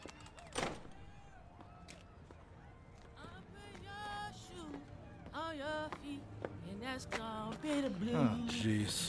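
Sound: door being opened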